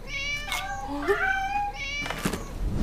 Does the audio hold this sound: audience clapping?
no